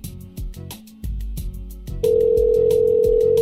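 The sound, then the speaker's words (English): A phone line rings on an outgoing call, a steady electronic ringback tone that starts partway through and holds loud to the end, over a thumping music beat with no talking. “Sitting here, waiting, ringing.”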